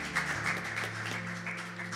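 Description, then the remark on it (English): A church audience claps steadily in a dense, continuous patter, with sustained musical tones humming beneath the applause. “You can clap your hands.”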